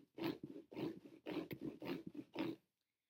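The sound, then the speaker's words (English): A cat scratches letters into a floor in five rasping, evenly spaced strokes about half a second apart, fairly loud, then stops. No one speaks. “Is she scratching letters into the floor?”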